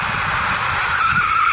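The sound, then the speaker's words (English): The tires of a driverless autonomous ride-hail car skid with a sustained, high-pitched squeal that sharpens into a steady whine near the end, over a low engine rumble. The sound is loud, with no voices. “Alright, car, drive it like you stole it.”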